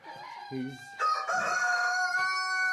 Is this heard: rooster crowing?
yes